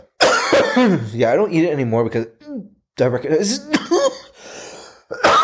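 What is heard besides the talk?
coughing and throat clearing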